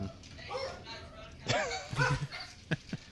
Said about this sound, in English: Whose dogs are those? Those are mine.